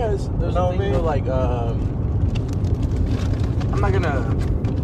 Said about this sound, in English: That's a midlife crisis car right there. Yes. Bro just wants to rip.